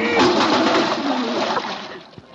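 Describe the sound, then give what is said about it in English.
A bucketful of water dumps down onto a man in one loud splash, a dense watery crash that spatters for about two seconds before trailing off into drips. “who put that water bucket up there?”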